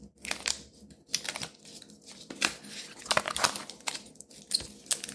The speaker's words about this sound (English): Alright, now I'm gonna peel the paper off this bad boy. Try not to be too crazy.